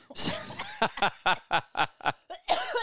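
Someone close by sputters into a fit of coughing after choking on a drink, about seven sharp, rhythmic bursts in quick succession that blur into laughter.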